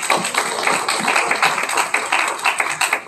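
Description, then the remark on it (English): A church audience claps hands for God at a morning service in a dense, steady burst of applause, many overlapping sharp claps forming a continuous crackling wash with no voices on top. “Give God a good hand clap this morning.”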